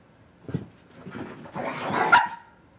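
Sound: dog barking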